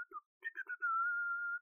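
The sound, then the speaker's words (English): A person whistles a short tune from a film's music: a few quick, choppy notes followed by one long, steady held note that fades out, with no talking. “And I was whistling in my, you know, throughout the day.”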